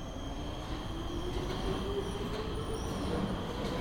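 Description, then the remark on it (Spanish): A subway train rumbles steadily with wheels squealing on the rails, thin high-pitched tones sliding over a constant low roar. No one speaks. “Tenemos que tomar este subte.”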